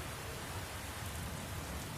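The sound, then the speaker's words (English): Heavy rain patters against a window in a steady, dense wash of drops, constant and unbroken throughout, with no voices present. “We open up on black with the sound of heavy rain pattering against a window.”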